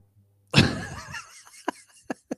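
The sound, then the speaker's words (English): A single loud cough from a person with a slight, allergy-driven cough bursts out and trails off, followed by a few short, sharp sounds in the quiet afterward. “Your boy's out here coughing quite a bit.”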